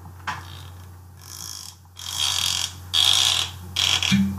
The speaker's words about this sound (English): Can you put the lid back on and take it off again? Yes. Ooh. Friction. A little bit right up to the microphone.